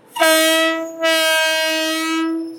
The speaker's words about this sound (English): As you can see, the railroad here has been reopened. We have another train moving through right now.